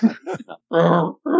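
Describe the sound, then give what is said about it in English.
A person makes a string of guttural, throaty vocal noises, short choppy bursts followed by two longer rasping growls, imitating the language of the Sand People, fairly loud. “Sounded like a lot of indigestion and, you know, trying to clear your throat, but hey.”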